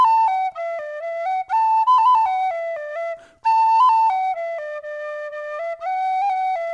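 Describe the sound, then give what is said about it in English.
A penny whistle plays a sweet, stepwise melody in two flowing phrases separated by a brief breath, with clear bright notes and no voices. “And the boy touched the penny whistle to his lips, and he began to play the sweetest song.”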